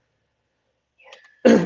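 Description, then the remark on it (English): After a quiet moment, a faint breathy intake builds into a single loud, explosive sneeze, with no talking around it. “Excuse me.”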